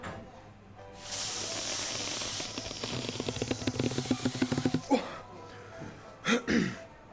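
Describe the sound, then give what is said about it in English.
Someone blows hard by mouth into a kid's balloon to make a snake balloon animal, a long breathy rush with fluttering, rubbery pulses, then pauses for a couple of sharp gasping breaths. Fairly loud. “You know, it's always great to see our midfield talisman struggle with his stamina when he's blowing up a fucking kid's balloon.”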